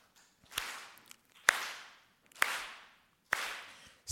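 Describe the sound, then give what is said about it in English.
Five sharp hand claps at a steady, unhurried pace, each a crisp loud smack followed by a lingering ringing tail that fades before the next, as a speaker starts a group song and invites the audience to join in. No one speaks. “So I'm going to clap and you guys just join me.”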